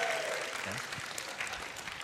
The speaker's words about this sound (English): You can applaud. That would be totally okay.